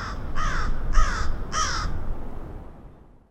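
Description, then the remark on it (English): A crow caws three times in quick, even succession in Chicago, each call harsh and raspy, clear over a low outdoor rumble, then the sound fades away. “Chicago's crows were hit by a deadly virus, and it's one that humans are susceptible to as well.”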